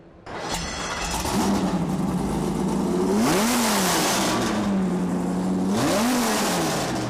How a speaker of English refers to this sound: We dropped a V10 engine, taking the engine of the Viper and dropping the V10 engine into a Challenger for pure drag racing. This is for the street.